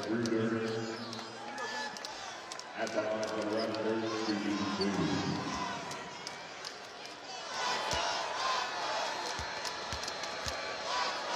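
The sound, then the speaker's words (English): A sparse crowd of Toronto Raptors fans in an arena chants loudly in unison, "Let's go Raptors," a rhythmic group call that fades into general crowd murmur, with sharp thuds like a ball bouncing on the court, during a basketball game against Charlotte. “A sparse gathering of Raptor fans chanting, "Let's go Raptors."”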